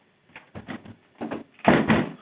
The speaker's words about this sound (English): Close the door. Excuse that, if it got so, you know, close that door, you know. Thank you.